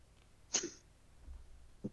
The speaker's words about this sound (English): Bless you.